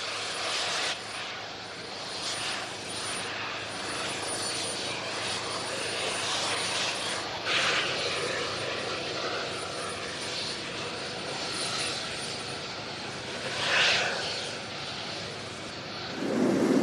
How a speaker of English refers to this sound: It was kind of an odd feeling, because they covered the actual takeoff of the Spirit of 76, and we were on the plane watching the TV covering the takeoff, which was sort of fascinating.